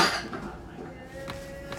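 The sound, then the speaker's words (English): A phone gets knocked over, ending in one sudden loud clattering thud right at the end, after a stretch of quiet shuffling with faint clinks and a low background murmur. “Knocked my phone.”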